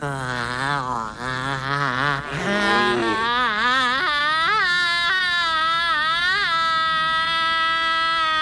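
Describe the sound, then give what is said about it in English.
An eerie, inhuman scream sustained for about eight seconds, loud and warbling, its pitch wobbling and then climbing higher midway before holding at a shrill level, with no talking. “The scream is very uncanny. It is not like a human being screams at all.”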